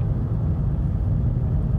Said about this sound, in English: And here is another car overtaking me. It's quite brazen. It's a van. Those vans, man, they're really brazen.